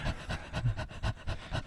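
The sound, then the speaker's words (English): A person imitates an old lady's dog panting: quick, breathy huffs repeated in a steady rhythm, about seven in under two seconds, fairly loud with no talking. “The old lady that was sitting back there with her stupid dog going.”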